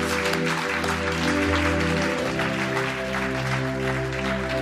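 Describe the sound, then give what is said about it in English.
Steady, loud applause from a large crowd giving a clap offering to the Lord fills the whole stretch, dense and continuous, over sustained organ-like keyboard chords that shift partway through. “Now, yes, why don't we give the Lord a clap offering?”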